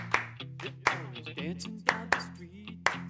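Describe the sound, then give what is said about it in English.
Sharp hand claps strike in a steady rhythm, about six in three seconds, over a song with a sung vocal and a sustained low bass line. “Okay, yeah, this is a great hand clap song.”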